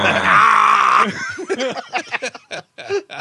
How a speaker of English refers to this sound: Didn't scream like that when he tore both of his quads.